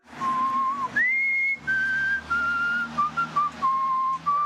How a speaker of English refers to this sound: My real question is, what were you whistling? What were you whistling?